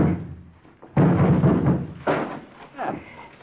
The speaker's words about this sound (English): The barn door's hooked on the inside. Somebody's in there. The wood's rotten. Let's break it down.